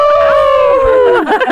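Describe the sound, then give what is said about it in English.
A loud, sustained howl from several human voices imitating wolves as the Windridge school Wolfpack, the long note sliding slowly downward before breaking into short wavering yips and laughter at the end. “I feel like we need to howl. Because if you're part of the Wolfpack, you have to howl.”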